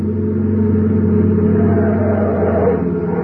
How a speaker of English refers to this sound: car coming up that highway now. Yeah, it sure looks like them. Boy, they must be doing 90.